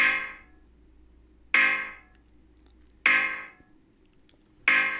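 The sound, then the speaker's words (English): A grating vaporwave track: a harsh, buzzy alarm-like tone strikes about every second and a half, each hit fading away, over a steady low droning bed. No voices. “I love vaporwave, but man, that's starting to grate on me.”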